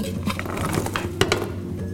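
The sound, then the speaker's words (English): Chunks of apple, stirred with nutmeg, cinnamon and pie crust mix, tumble and patter into a 13x9 dish sprayed with grapeseed oil, a busy run of soft thuds and light clinks with one sharper knock partway through; no one talks. “And then we're gonna pour our apples into the dish.”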